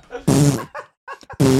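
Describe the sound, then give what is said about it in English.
A voice imitates someone's repeated farts under a sheet: two loud, buzzy, low blasts with quieter sputtering mouth noises in between, repeated in quick succession. “he would form this tent with a sheet where he'd like entomb his entire body in it, and he would fart like 30 fucking times before he actually would unleash that sheet.”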